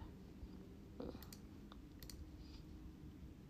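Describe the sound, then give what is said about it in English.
A handful of soft, sharp clicks from a computer mouse clicking on YouTube videos, spaced irregularly with a couple in quick pairs, faint over a low steady background hum. “I just gotta finish clicking on all these videos on YouTube.”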